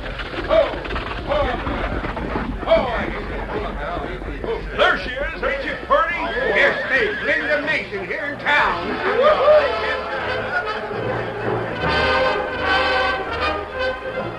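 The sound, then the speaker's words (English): A lively, excited crowd in town, meeting an arriving stagecoach, chatters and calls out all at once, many overlapping voices forming a steady, fairly loud hubbub that carries on throughout without letting up. “The stage arrived in town to be met by an excited crowd.”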